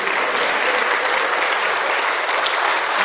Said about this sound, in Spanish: No tiene que aplaudir, tranquilo.